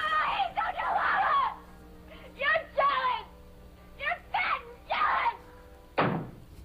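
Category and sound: household object, door slamming shut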